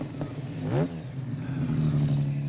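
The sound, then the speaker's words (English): A car engine revs up sharply, its pitch climbing briefly before settling into a loud, steady drone, with a faint clatter underneath and no one speaking. “And they have been issued the noisiest vehicles in the history of the world.”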